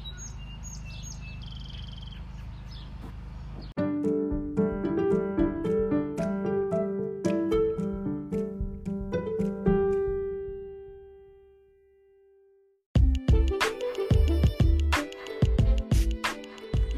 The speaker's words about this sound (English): How do I turn the robin bird alarm off?